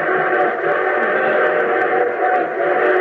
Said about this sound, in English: But our train whistle sounds closer. Well, of course it sounds closer. It's going to pass within a mile and a half of it.